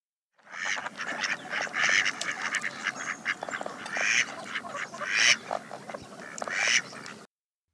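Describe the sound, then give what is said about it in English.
A mallard duck quacks repeatedly in loud, raspy bursts, the calls coming in an irregular series over several seconds, clear with no talking. “If it looks like a duck and it quacks like a duck, it's probably a mallard.”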